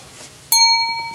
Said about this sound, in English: Did you hear that? Did you hear bell? Means it's time to pick of the buck with Pac-Man.